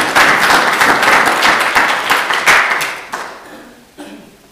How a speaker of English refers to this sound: Round of applause, then. Thank you.